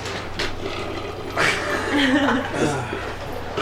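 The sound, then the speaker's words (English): A low, croaky burp after drinking water rumbles out in one drawn-out, guttural stretch, moderately loud, with a brief rough vocal noise before it over a steady background hum. “What are you burping from? It's just water.”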